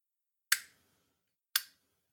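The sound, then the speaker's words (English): A lighter lid clicks twice, about a second apart: two crisp, bright metallic snaps, fairly loud, each ringing off quickly into silence, with no voices. “Clicking.”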